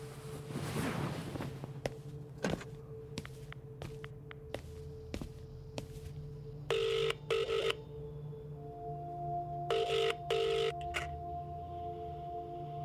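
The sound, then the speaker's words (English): A quick run of short, sharp dialing clicks and beeps over a low steady hum, followed by two pairs of buzzing telephone rings with a pause between them, as someone phones their father. “I'll let you make the call then.”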